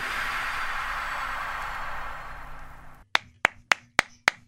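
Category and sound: crowd, clapping and cheering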